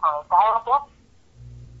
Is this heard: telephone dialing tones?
yes